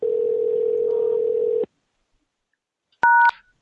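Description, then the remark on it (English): A steady, low telephone tone hums for over a second and cuts off, then after a silent pause a single loud, short two-pitched keypad beep sounds as the caller presses star on the telephone keypad. No one speaks. “Maybe I'll do star.”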